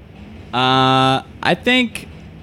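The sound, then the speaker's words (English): A voice imitates a subway train sound effect for transferring to the five train: a steady, buzzy held tone, then a quick falling swoop and a shorter tone, ending with a brief breathy burst, fairly loud. “Transferring to the five train.”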